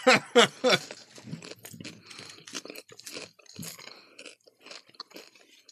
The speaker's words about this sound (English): How did they carbonate popcorn? Why is it fizzing? I don't know. But it does that. I was going to warn you, but I didn't. It's good. Right? It's fizzing like Pop Rocks do. Mm-hmm. Only for a second.